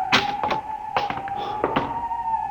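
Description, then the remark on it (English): A heavy door in a municipal building opens with a few dull thunks and knocks spread over a couple of seconds, over a faint steady hum. The door is in good working order, as if recently oiled. No voices. “This door is in good working order. Almost as if it had been oiled recently.”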